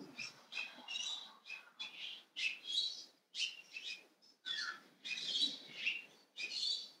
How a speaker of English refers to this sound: You might be hearing the birds